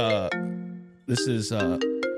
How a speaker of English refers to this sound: Who is this? Shit, we're getting phone calls? Oh, this is... Hold up.